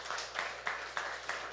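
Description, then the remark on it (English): An audience applauds themselves for supporting teachers in LaPel schools. The clapping is steady and dense and holds at an even, moderate level, with a few sharper claps standing out every so often. No one speaks over it. “Yeah, give yourself a round of applause for that.”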